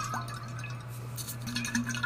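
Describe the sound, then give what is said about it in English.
Quiet liquid sounds of someone drinking from a new pink water bottle decorated with strawberries, with small wet sips and drips over a steady low electrical hum, no talking. “I would like everyone to know that I got this new water bottle from Target. Let me do some ASMR for you.”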